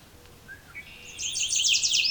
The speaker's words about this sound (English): Far off, I can hear Veery and northern water thrush.